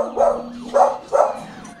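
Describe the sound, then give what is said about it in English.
Three sharp dog barks in quick succession, loud, with a faint steady tone humming underneath and no talking; the dogs bark as police arrive. “I see you got your dogs well trained. They hear the cops and they let you know.”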